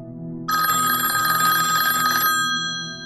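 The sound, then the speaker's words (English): A cell phone rings loudly and steadily for about two seconds during a movie screening, a bright, buzzing electronic trill that cuts off abruptly over a low background hum, with no one talking. “Somebody's got their cell phone on and it's going off.”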